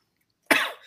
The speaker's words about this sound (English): I had a cough drop in me and it's making me cough.